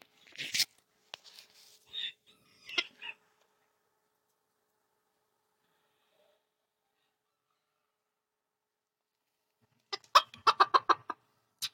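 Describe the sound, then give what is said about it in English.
A chicken clucks a few scattered times, falls quiet for several seconds, then lets out a quick, rapid run of clucks. “Okay, my chicken.”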